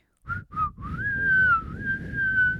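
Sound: person whistling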